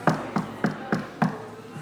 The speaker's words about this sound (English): Go knock on the door.